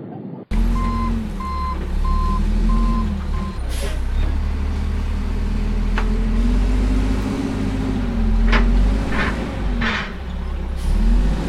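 A heavy truck backs up with a steady series of high reversing beeps for a few seconds, its loud diesel engine rumbling close by and continuing after the beeping stops.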